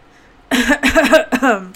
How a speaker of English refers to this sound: As my daughter says, clear your throat, you're a frog. That's a froggy frog.